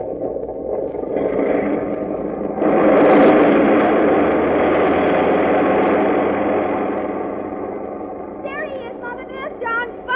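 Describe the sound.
Airplane engines roar steadily as a plane takes off, surging sharply louder a few seconds in and holding a loud, dense drone that eases slightly, with a voice breaking in over the noise near the end.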